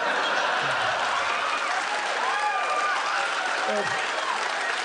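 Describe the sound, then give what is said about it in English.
Steady, sustained applause from an audience for the payoff of a joke fills the whole clip, a dense wash of clapping at an even level, with faint voices and a few cheers mixed underneath. “I think they're just applauding the payoff.”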